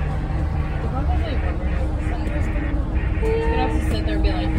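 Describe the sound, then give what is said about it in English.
Inside a moving bus carrying band members to a band competition, a steady low engine rumble fills the cabin while several passengers chat in an indistinct, overlapping murmur throughout. “So we're on the bus right now, surrounded by other people who are also in band.”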